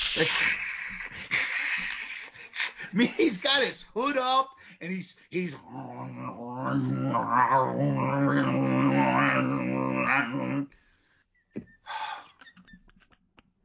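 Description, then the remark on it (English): Piper, prompted by Gene Okerlund, makes drawn-out hissing, growling cat and snake noises with his voice, harsh, between bursts of ordinary talking. “Gene Okerlund finally gets Piper's attention, where he starts making these cat/snake noises. He's a cat.”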